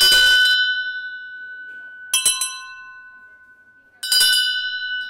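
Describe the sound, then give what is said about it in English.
A metal bell is struck repeatedly: one clear strike, a quick cluster of taps, then another strike. Each hit leaves a bright, sustained ringing tone that slowly fades between strikes. No one speaks. “If I ring this, you'll hear the sound. And then we'll compare that to a brass tuning fork. I mean, brass bell, sorry.”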